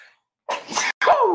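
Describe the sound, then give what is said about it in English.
A loud sneeze bursts out in two explosive parts, a sharp breathy blast followed by a brief gap and a second forceful release that trails off, with no talking. “I just sneezed out my soul on that one.”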